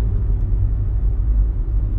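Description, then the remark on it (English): A steady low rumble of a car in motion, with a constant deep engine and road drone throughout and no voices. “The car moving? Mm-hmm. He right there. That's the car right there.”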